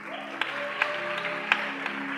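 A church audience claps for the media team in a steady wash of applause, a few sharper claps standing out, over a low sustained musical hum.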